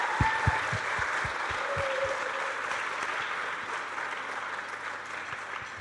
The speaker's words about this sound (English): So let's give one massive, really big round of applause to yourselves.